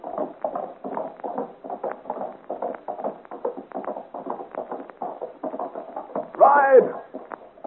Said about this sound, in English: But Joel pulls roughly at the horse's bridle and, shouting encouragement to her, gallops out into the darkness of the forest.